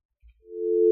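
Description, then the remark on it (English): A steady telephone dial tone on a newly installed phone line hums in after a soft low thump, growing louder and holding a continuous, unbroken pitch right up to the end, clear with no voices. “I mean, we have a dial tone.”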